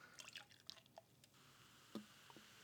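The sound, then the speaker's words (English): Beer trickles into a beer stein in quiet, uneven splashes and drips, with a sharper clink near the end; no talking. “Well, now I'm going to pour this in here.”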